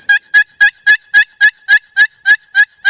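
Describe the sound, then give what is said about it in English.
A turkey-hunting box call plays a fast, steady run of about eleven loud, raspy hen turkey yelps, each note evenly spaced with no voices. “When I hunt public land, I can tell a box caller from a mile away, because I guarantee you, if you hunt public land, just what you're going to hear.”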